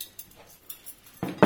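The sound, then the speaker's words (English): Light metallic clinks of cutlery and wine glasses being laid out on a table during a table-service class for butler trainees at the Bespoke Bureau, with a few scattered taps followed by two louder clatters near the end. “That is, the correct way to lay out cutlery and wine glasses, how to serve drinks, and how to open a champagne bottle.”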